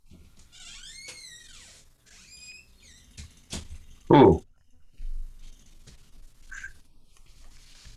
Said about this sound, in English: Kind of like a scene from a scary movie with the squeaky door.